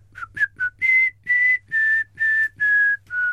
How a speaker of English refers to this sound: I'd whistle the very first part of the Some Mothers Do Have Them theme